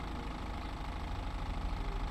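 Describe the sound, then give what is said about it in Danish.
A taxi's engine idles steadily on a street (Morbærhaven) in Albertslund, near Copenhagen, Denmark, early on a Saturday morning in October, a continuous low rumble with a faint rhythmic knock and even loudness throughout, with no voices. “Hun undrede sig over en taxa, der holdt i tomgang på gaden.”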